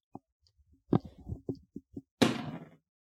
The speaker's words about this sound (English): All right, you are able to hear the creaking behind you. It sounds like wood snapping and flesh tearing.